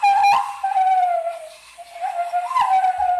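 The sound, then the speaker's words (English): A person whistles in imitation of a bird call, holding a steady, slightly wavering note with quick upward swoops near the start and again toward the end. “Does some bird whistles.”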